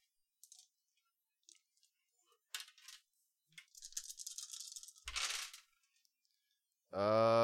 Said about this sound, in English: You start burning your steel, and go ahead and give me a steel pushing roll. 5 dice. Okay.